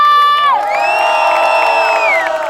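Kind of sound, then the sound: crowd, crowd cheering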